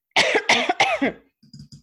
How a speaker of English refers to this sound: Now I have to clear my throat, of course, because I've started recording.